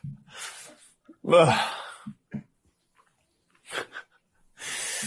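Rough, breathy snoring in a house: about four noisy snorts and inhales come in uneven bursts with short silent gaps between them. No one is talking.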